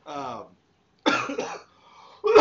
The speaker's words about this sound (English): excuse me. Can't get rid of this damn cough.